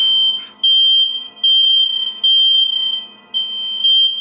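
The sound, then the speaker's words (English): A halfway melted smoke detector with an expired battery blares a loud, shrill high-pitched tone in repeated long pulses, sounding continuously with only brief gaps, piercing with no one talking. “It's just that this particular one is so vexing with its incessant...”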